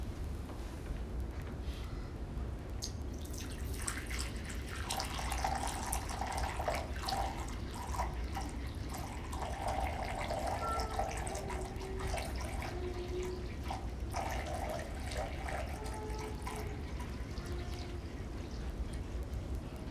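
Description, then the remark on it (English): Liquid pours out steadily for about twenty seconds, a continuous splashing rush with bubbly gurgles rising and falling throughout, fairly loud, with no voices. “if the pastor were to take that little 15-millimeter bottle, pour it in here, and then pour another one, and pour all 12 into here, and then pour it out on the ground,”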